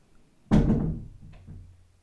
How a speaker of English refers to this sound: She just closed me in here, which means there's going to be mess.